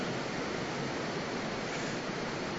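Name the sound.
rain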